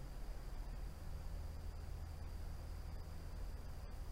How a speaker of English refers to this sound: and you hear the rain outside. Just hear the rain. And you hear the little creak of the building. And you hear the different patterns in the rain.